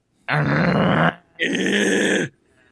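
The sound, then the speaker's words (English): A tortoise mating noise: two loud, drawn-out groaning calls, each under a second, separated by a short pause, the second one a little brighter and more strained. “Have you seen those tortoises banging and heard that noise they make?”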